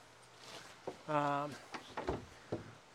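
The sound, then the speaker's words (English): A wooden trap door is swung shut for winter, its hinges giving a short tonal creak, followed by a few dull knocks and thuds as it settles into place. “So this is the trap door. There's a box outside that I dump my Fort V into with the tractor bucket. This closes for, you know, winter.”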